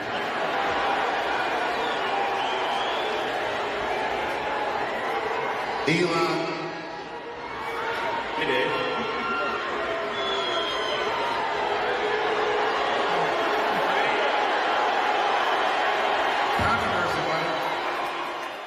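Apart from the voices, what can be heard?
crowd cheering and booing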